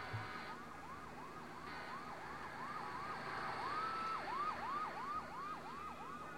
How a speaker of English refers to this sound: got sirens, you know, they already blew up a giant pit in the first episode, setting the stakes and giving us a sense of what the threat will be.